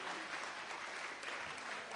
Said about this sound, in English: Round of applause.